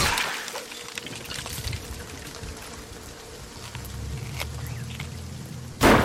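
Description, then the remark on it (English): Steady rain-like hiss with low rumbling underneath, then a sudden loud, sharp crack of a video game lightning strike bursts in right at the end. No one speaks. “I just got hit by lightning and I'm on fire.”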